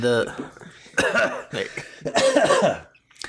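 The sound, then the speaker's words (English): A few sharp coughs come in quick succession, each a rough burst of breath mixed with throaty voicing, ending in a brief quiet pause. “Before you talk, cough.”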